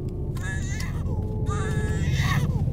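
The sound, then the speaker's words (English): A baby girl cries in her car seat inside a car that is in park in stalled traffic, in two wailing bursts, high and strained with wavering pitch, over a steady low rumble like an idling engine. “We haven't moved in the last hour, and it doesn't seem like we will soon, so please just pass me the baby so we don't have to listen to her crying.”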